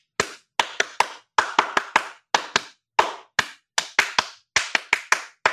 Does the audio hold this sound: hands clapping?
yes